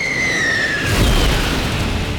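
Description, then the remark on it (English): A high-pitched whine as a damaged sonic jet hurtles down out of the sky for about a second, then a loud crash and explosion as it hits the lower abdomen of a giant's corpse, erupting into a deep, rumbling boom that carries on to the end. “A damaged sonic jet came hurtling out of the sky, crashing into the lower abdomen of the giant's corpse, several feet away from Vithar.”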